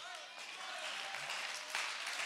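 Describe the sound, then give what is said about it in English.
A church audience claps together in a dense, steady wash of applause, staying loud and even throughout with faint voices mixed in beneath it. “You better clap with an understanding.”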